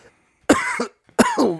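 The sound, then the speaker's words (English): Two harsh coughs in quick succession from a man coughing in someone's face, each a sharp burst with a rough, raspy tail, separated by a brief pause. “He's coughing in my face.”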